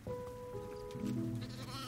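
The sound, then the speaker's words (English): Miniature sheep bleat, a steady tonal call overlapped by a second, lower wavering bleat, fairly loud over faint farmyard background noise, with no talking. “By the early 1990s, Flying W had a herd of 33 miniature sheep.”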